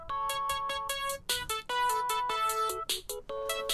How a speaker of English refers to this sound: Ringtone. Jesus Christ. You have like an alarm for that?